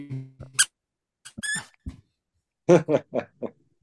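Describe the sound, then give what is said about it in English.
A squeaky rubber toy monkey being squeezed: a few scattered, wheezy squeaks, a pause, then a quick run of four close, fairly loud squeaks. No one talks. “Squeak that monkey.”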